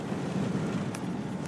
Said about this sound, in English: Hey, I'm in the car driving.